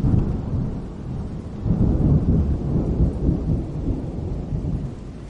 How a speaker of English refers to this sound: and the rain has really set in right now.